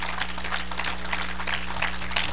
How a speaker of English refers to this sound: If I have a friend in the house, would you give the Lord a hand clap of appreciation?